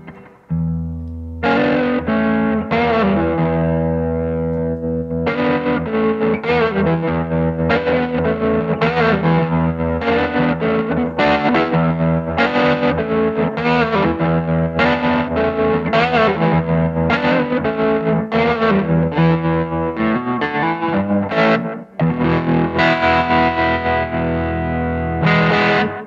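A three-pickup electric guitar plays loud, heavily distorted chords in a steady rhythmic pattern, with a brief break near the end before the strumming resumes. No one speaks over it.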